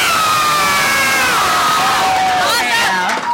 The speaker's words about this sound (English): And can you guys just make sure when you like scream, just scream really loud so it seems like, oh my God, this is such a popular podcast.